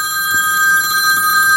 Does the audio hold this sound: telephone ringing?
yes